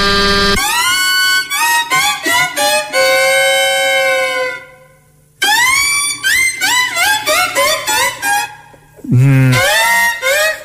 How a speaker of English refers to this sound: See? That's why I think the horn on this car just sounds weird. You have to take it back. I can't drive around in it. No one's taking me seriously.